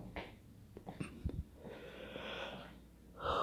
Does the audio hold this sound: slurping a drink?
no